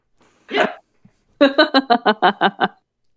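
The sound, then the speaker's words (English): A dog trying to wage war against the household's other pets lets out one bark, pauses briefly, then fires off a quick run of about eight sharp, evenly spaced barks, loud with no talking. “Our dog is now trying to wage war against our other pets.”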